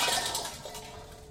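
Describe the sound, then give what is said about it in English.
Metal pans clatter and scrape as the county attorney kicks them under a sink, a jumbled burst of clanging followed by a second knock, with a bright ringing edge that fades quickly. No one speaks. “He kicks the pans under the sink.”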